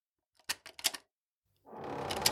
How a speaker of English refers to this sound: But just as they were stepping down to the sidewalk, they heard the locks at the door click and rattle.